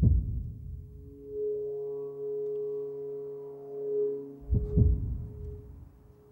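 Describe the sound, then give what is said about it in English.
Deep, muffled heartbeat thumps from the opening sequence of the TV show Hard Grit, a cluster at the start and a strong double beat near the end, with a sustained droning musical tone swelling between them. No one speaks. “The heartbeat, the distorted images, the guitar chords.”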